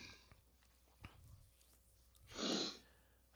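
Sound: yawning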